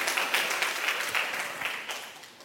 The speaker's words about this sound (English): So this is not a controversial statement, but I believe that New York City is the greatest city in the world. And y'all can clap for New York. Y'all can clap for New York.